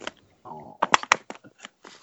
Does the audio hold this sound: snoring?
no